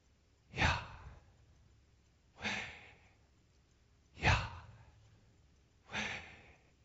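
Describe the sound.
Four heavy, breathy gasps, evenly spaced about two seconds apart, each a loud rush of air in and out, made by a person imitating someone at their deathbed gasping for breath, with no talking.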